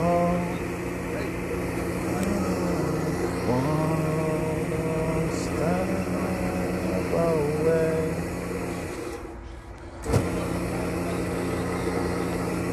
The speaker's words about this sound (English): That's the coffee machine, precision grinder. We put this freshly ground coffee. We put coffee beans in there, and it grinds it up, and our coffee is very much freshly ground coffee.